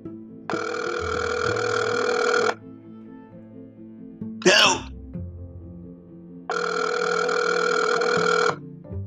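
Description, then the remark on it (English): A telephone rings unanswered: two long, steady buzzing rings a few seconds apart, fairly loud, with a single brief spoken word from a voice in the pause between them. “People at this show never answer the phone.”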